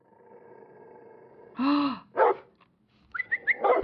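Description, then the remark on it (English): A dog named Buster gives a few sharp, irregular barks and yelps, one drawn out and whiny, over a faint steady hum, with no one speaking. “You found Buster. Hey, baby. Buster? What has gotten into you? Stupid dog.”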